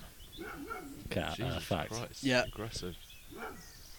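A dog barks loudly several times in a quick, uneven run, with a few softer yelps before and after the main burst, while chasing other dogs up and down a garden outdoors.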